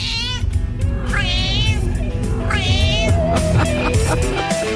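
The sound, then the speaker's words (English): A cat meows twice, each a drawn-out, rising-then-falling cry, clear over a steady low background rumble. “Does this cat have a Scouse accent?”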